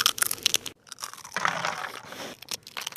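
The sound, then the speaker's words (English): A brown paper bag rustles and crinkles, with sharp crackling bursts at first, then a steadier papery scrunching as it's handled while a wrap of Eastern-spiced food is put in it and served. No one speaks. “In a brown paper bag.”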